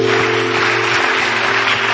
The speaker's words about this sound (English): Put your hands together at this.